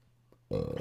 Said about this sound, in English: That was just a regular burp, in case you were wondering.